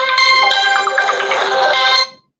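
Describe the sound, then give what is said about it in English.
A Motorola "Hello Moto" phone ringtone plays loud, a bright synthetic melodic phrase lasting about two seconds, then cuts off cleanly with no talking over it. “Hello, Moto.”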